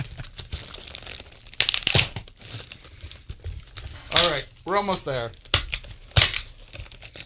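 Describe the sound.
Loud crinkling and ripping as tape is torn from a package, in sharp bursts with rustling between, while a person talks briefly over the noise.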